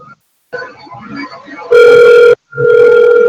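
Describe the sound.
A phone line rings as a call is placed: two long, steady electronic ring tones separated by a short gap, loud, following a moment of murmured talk.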